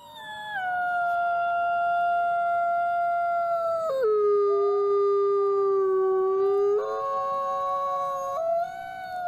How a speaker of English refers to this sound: The ominous howl of the wolf, a sound that would have chilled the blood of our ancestors right up until the late 18th century, when the last known wild wolf in Ireland was shot on Mount Leinster.